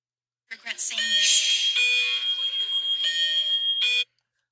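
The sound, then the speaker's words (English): A loud, harsh electronic school alarm blares for a few seconds, its shrill tone shifting in short pulsing segments, piercing. “bye-bye phone speakers. Beep, beep, beep, beep, beep, beep.”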